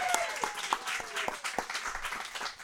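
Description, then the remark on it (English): An audience at 451 Spirits breaks into a round of applause for the evening's guests, who have a new movie, Obstacle Corpse. A dense, steady patter of many hands claps for a few seconds, with a handful of sharper claps standing out and faint voices mixed in. “Before I dive into stuff, let me just say, how about a nice round of applause for our spooky guests this evening?”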